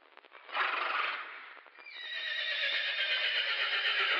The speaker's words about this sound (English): Oh, my. I didn't know anyone around here owned a horse.